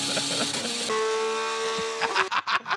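A loud race car engine whines at high revs, its droning pitch jumping abruptly higher partway through, then breaking into choppy, sputtering revs near the end. No one speaks.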